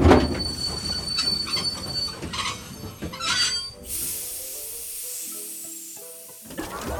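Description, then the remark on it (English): Metal trolley wheels grind and rumble along rails, then break into a loud, sustained high-pitched squeal that holds steady for several seconds before the rumbling returns. No one speaks. “Something is blocking the way in front of the rainbow tunnel. It looks like a... Trolley Robozuki!”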